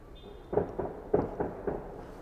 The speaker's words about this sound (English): Fireworks or gunshots? The great American question. I don't know if you guys can hear that. Oh, those are fireworks. I just heard some crackle. Some. So there's nothing to worry about there.